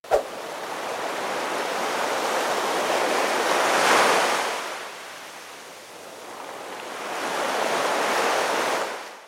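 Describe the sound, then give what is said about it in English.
A single water drop plinks at the very start, then ocean waves roll in with a steady hiss, swelling, easing and building again in two broad surges. No voices. “The phrase I was looking for was a drop in the ocean.”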